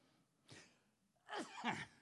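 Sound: sneeze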